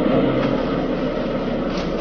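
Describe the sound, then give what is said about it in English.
A car engine drones steadily while backing out through hedges, joined by a dense, continuous rustling and scraping of branches brushing along the bodywork. The sound stays loud and even throughout, with no voices. “Like backing the car through a jungle.”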